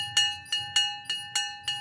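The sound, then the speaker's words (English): A bell marking the end of the Curious Creatures program rings with six quick, evenly spaced metallic strikes over a steady, bright ringing tone that carries through between hits. No one speaks. “That's the bell.”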